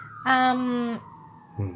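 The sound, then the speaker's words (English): A brief, loud emergency siren blares for under a second with a steady, buzzy tone over a low background hum, then a second blast starts just as the sound cuts off. “So one of the things I was trying to figure out, first siren of the episode there, Riverdale gang.”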